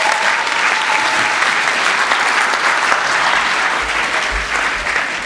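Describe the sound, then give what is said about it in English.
An audience claps steadily for people who helped out, a dense, sustained wash of applause lasting several seconds at full volume, with no pauses or voices standing out. “Let's applaud these guys for helping us out.”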